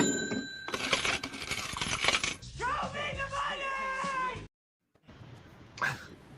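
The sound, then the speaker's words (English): A bright cash register sound effect rings with a jangle of coins, followed by a wavering, meow-like cry, a brief silence, then a short burst of noise. “It really is just the dichotomy of the cash register graphic, which is nice and crisp, and then immediately to Tom Blob Cruise.”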